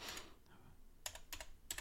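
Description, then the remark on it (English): Quick clicking of keys on a computer keyboard as a link is typed into a chat, a brief flurry followed by a few separate bursts of taps, with no one talking. “I can't even see my keyboard. Hopefully that spells it.”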